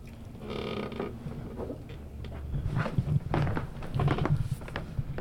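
A motorized recliner chair whirs with a low, steady mechanical hum, broken by a series of soft creaks and dull thumps as it shifts position. No one speaks.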